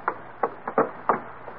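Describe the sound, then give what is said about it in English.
Six hollow knocks on the door of the McGee home at 79 Westville Vista, in an uneven rhythm, with two quick raps close together in the middle and the final knock fainter, with no voices. “He checks the house number, 79 Westville Vista, with a slip of paper in his hand, and... aha! Opportunity knocks.”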